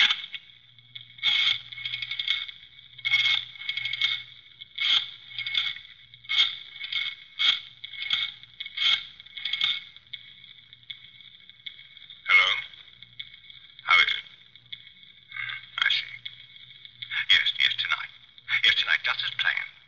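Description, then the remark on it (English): A payphone call being placed: a steady run of bright, evenly spaced clicks and clinks, then a few separate metallic clatters like coins dropping, fairly loud with no talking. “I better phone the place.”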